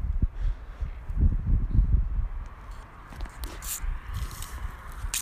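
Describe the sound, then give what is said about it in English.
Someone gulps a drink in quick, wet swallows, with a run of low, thick glugs early on and scattered slurping splashes afterward. No one speaks. “He is chugging away.”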